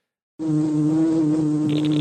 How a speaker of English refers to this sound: It just sounds rude, dirty old wasp noises.